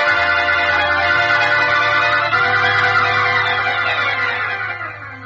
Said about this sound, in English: Suddenly, off in the distance, Superman hears the eerie wail of police car sirens drawing closer and closer.